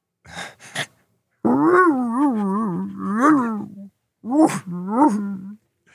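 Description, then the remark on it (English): A person imitates a sad dog with long, wavering whimpering whines, a couple of short breathy sniffs first, then two drawn-out mournful cries. “I thought that was actually really good for a sad dog impression.”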